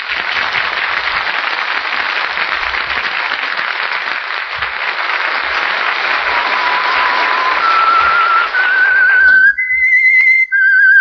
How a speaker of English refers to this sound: That whistle is your invitation to another Meisterbrau mystery drama presented by The Whistler.